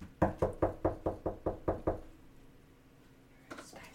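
A rapid series of eight firm knocks on a door, evenly spaced, followed by quiet room tone and a faint rustle near the end.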